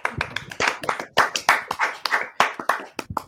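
A small group giving a restrained golf clap at a bugle dueling competition: soft, scattered hand claps in an uneven patter, steady and moderately quiet, with no voices over it.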